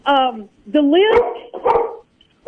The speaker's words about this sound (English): And you're about to hear my puppy. I love it. That is part of the show.